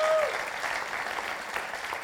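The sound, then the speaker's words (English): Audience applause at a church service for the children's ministry team, asked to stand: a steady wash of many hands clapping at a fairly even loudness for a couple of seconds, with a brief whistle-like tone at the very start. “Take the applause, guys.”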